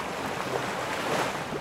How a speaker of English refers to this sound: When you think of San Diego, what comes to mind? The ocean is always kind of the background sound.